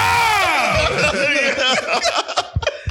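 A person lets out a loud, high-pitched scream. It wavers for about two seconds, then breaks into choppy, laugh-like vocal bursts.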